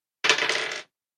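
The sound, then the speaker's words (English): A short clatter of dice tumbling across a table, lasting about half a second with a rapid rattling texture before stopping abruptly. “Or at least I can try, if my dice decide that I'm worthy.”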